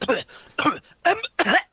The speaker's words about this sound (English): Just to clear my throat then.